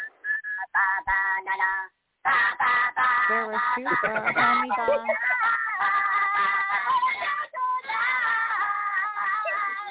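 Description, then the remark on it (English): A chicken squawks loudly and repeatedly, harsh honking cries tumbling over one another for several seconds, with only a brief pause near the start and no talking. “I think Brandy is choking her chicken.”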